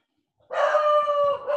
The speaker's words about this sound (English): Your dog just barked so loud that my dog heard it in my headphones. Hey, it's okay. It's a good boy.